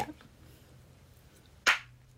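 A single sharp hand clap for syncing audio rings out loud, standing alone after a stretch of quiet room tone with a faint low hum underneath.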